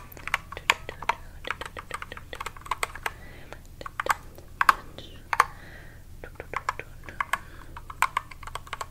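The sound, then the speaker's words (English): Rapid, irregular keystrokes clatter on a computer keyboard throughout, crisp, with bursts of quick taps separated by brief pauses and no one speaking. “But I'm busy typing lots of other things.”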